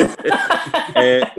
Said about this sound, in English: Bit of a cough? Just a bit of a tickle.